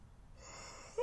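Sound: yawn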